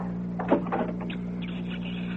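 A door is opened to answer it: a couple of quick clunks from the latch and handle, then a short, high creaking squeak from the hinges, over a low steady hum.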